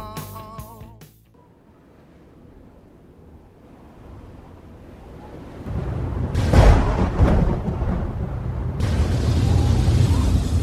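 A brief musical tone gives way to a low, building rumble of thunder from a brewing storm that swells into a loud crash, followed by sustained stormy roaring noise with no voices.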